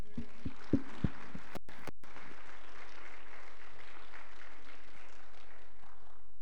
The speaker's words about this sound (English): So thank you all, and let's give a big round of applause to the mothers.